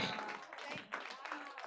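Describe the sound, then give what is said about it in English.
An audience applauds for the Lord Jesus in a steady, dense wash of clapping, with scattered voices calling out over it for the whole short stretch. “Clap for the Lord Jesus.”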